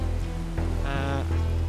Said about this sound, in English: Waiting for the rain to pass. We'll be here for a while. Now it's strong. Lakas ng ulan na.